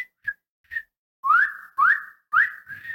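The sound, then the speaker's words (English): A person tries to whistle: a few short, faint breathy attempts, then three louder, longer whistles that each swoop upward in pitch, with no talking. “I can't whistle right now. Usually I can whistle.”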